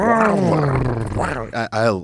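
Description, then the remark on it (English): A voice imitates the engine of a hydrogen-powered Toyota car seen in a video, with a loud, growling roar whose pitch wavers for over a second, followed by two short, punchy revving bursts. “it turns out hydrogen-powered cars sound pretty fucking dope”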